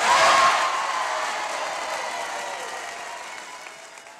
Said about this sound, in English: Just listen to that crowd. They were ecstatic.